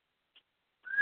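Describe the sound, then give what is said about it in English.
A female pet bird called Salty Bird or Birdie gives a short high chirp, then after a pause lets out a loud, steady whistle held on one bright pitch, with no one talking. “Birdie needs to feel included.”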